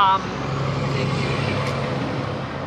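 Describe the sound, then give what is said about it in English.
A large semi truck roars past on a four-lane neighborhood street, its deep engine drone and broad road rumble holding loud and steady for a few seconds. “Giant truck, semi-town.”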